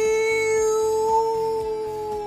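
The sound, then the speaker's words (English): In a story, the big teleporting wolf gives one last farewell howl, held steady on one high, clear pitch for about two seconds, loud and unbroken, with a soft rhythmic low thumping pulsing underneath. “And with that, the adventurers bid farewell to the big teleporting wolf, who sent them away with one last howl.”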